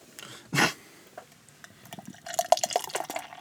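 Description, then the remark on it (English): A beer can cracks open with a sharp, hissing pop, followed after a brief pause by bubbly pouring and fizzing as the beer fills a glass. No one speaks. “I'm going to just... crack that beer.”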